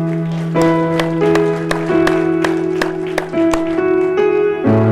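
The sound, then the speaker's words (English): A church audience claps hands together in a steady, even beat for God during a morning service, sharp claps landing about twice a second over loud, sustained organ-like chords that shift pitch now and then. “Can we give him a big hand clap this morning?”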